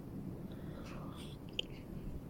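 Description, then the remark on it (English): A quiet sip of tea from a cup: a soft, brief slurp with faint mouth sounds and a small click, over low background hiss and no talking. “So yeah, let me just sip my tea.”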